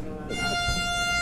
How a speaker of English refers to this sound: There's the air horn. They have a horn to mark the end of the market. It's a boat horn.